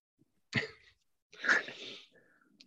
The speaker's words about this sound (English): All right. Why choke back this cough and don't cough into the microphone?